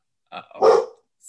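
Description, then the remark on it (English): A single sharp, fairly loud bark from a male pet dog at home, with a short yip-like lead-in and a faint high chirp right after; no other sounds around it. “We all love our puppies. He wants his 3 minutes of fame.”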